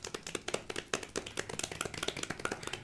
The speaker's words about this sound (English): How about a quiet, respectful golf clap? Yeah, absolutely.